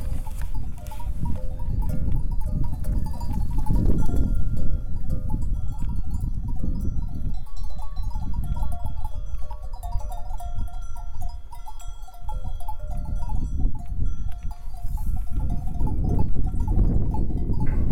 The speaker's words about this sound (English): This sound of bells that cows or sheep or even goats can carry with them.